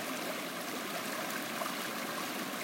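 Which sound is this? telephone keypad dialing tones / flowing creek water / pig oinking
flowing creek water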